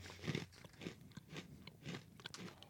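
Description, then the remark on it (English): Crunching as someone chews hard garlic Parmesan sourdough pretzel pieces, sold as little broken pieces, with about five or six brittle, crackling bites in a steady rhythm and no talking. “Now, this is their crunch pieces thing, so it comes in little broken pieces, and it is their sourdough pretzels.”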